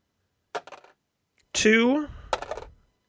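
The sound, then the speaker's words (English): Several dice, rolled on a dice cam for 6d6 damage to a Hobgoblin, clatter onto a hard surface in two short bursts of rattling, separated by a brief voiced exclamation. The sounds are fairly quiet. “So to the dice cam, because we've got a lot of dice to roll.”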